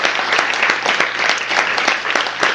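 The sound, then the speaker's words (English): Steady applause from an audience, a dense wash of many hands clapping at once, loud and continuous throughout with a few sharper individual claps standing out, given for Narrow Books, the Rattling Wall's publisher, and Penn Center USA. “So I'd like to give a big round of applause.”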